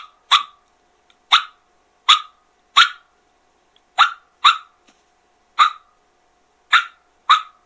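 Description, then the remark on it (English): Sharp, popping turkey alarm putts made on a call, about nine of them in an uneven rhythm, each a short, hollow, fairly high-pitched burst with brief silence between, and no talking. “I'll probably sound like a rookie amateur on here, but I mean, an alarm putt to me has a popping, more hollow, more high pitched sound with a little less rasp.”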